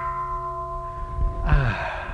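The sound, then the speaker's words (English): A meditation bell rung at the end of a meditation, its sustained ring with several steady, layered tones hanging in the air, then fading into a soft breathy sigh near the end. No one speaks. “Also, one of the other really good gaps is the gap when the bell goes at the end of the meditation, or the non-meditation.”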